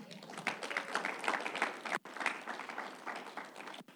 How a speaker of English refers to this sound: Last point, are we ready? Can we clap it in, intro this last point?